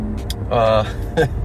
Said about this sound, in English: Of course, you hear me in the car. Nice and noisy for you. I'm sure you'll love it.